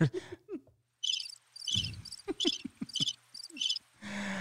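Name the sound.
chirping crickets sound effect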